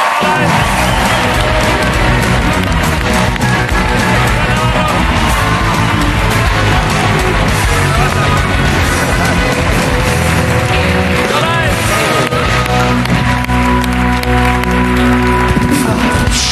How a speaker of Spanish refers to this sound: Estamos encantados. Un aplauso para Aymar Navarro, en La Resistencia.